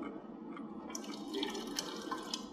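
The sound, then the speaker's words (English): A faucet of a combined toilet-sink unit runs steadily into the sink, a continuous hissing splash, growing brighter and more splashy about a second in as the stream hits the basin. “There's also water that is provided in this is a combination of toilet, sink, and the sink provides fresh water.”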